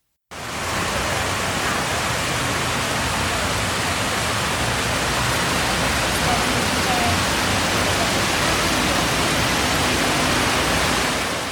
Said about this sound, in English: As you walk up on it, it's this amazing, huge hole in the ground, and a cascade of water falls into this abyss.